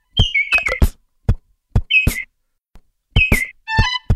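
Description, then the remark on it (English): A lesser vasa parrot in the Madagascar rainforest calls in short bursts of high, wavering whistled notes broken by sharp knocking clicks, with brief pauses between phrases. The final phrase is a rapid, stuttering series. No one speaks. “The next one is the lesser vasa parrot.”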